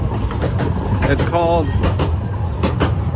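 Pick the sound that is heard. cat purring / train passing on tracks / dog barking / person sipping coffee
train passing on tracks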